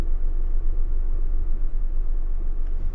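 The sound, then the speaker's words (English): A steady, low engine rumble fills the whole stretch, like a car idling or rolling slowly, with a constant droning hum and no voices. “I'm waiting for this car to move.”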